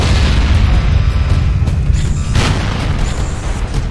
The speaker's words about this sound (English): Oh no. Explosions.